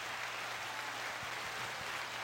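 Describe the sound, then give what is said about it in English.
Dense, steady applause from many hands clapping at once, a continuous crackling wash lasting a couple of seconds, fairly quiet, with no voices over it. “Clap it up for that.”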